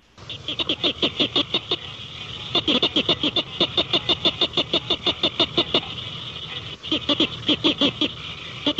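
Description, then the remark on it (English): A northern cricket frog calls with sharp, dry clicks repeated steadily several times a second, in long trains broken by brief pauses, loud and insistent with no voices. “Well, let's take a listen to the I think we have that, the northern cricket frog. Let's take a listen to that real quick.”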